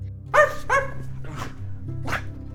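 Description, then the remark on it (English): A small terrier barks in sharp, high yaps, four in all: two quick ones close together, then two more spaced out, over a low steady hum. “their adorable terrier, runs into the room to attack and sufficiently lick the newcomer.”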